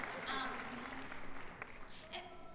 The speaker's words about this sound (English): So, and you deserve a round of applause for being just an incredible fan base.